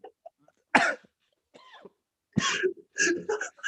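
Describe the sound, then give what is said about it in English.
A short, sharp cough, followed after a pause by a few rougher throaty bursts like coughing or throat clearing. “Was this a little cough?”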